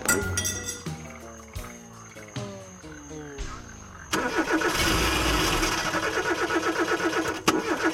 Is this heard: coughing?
no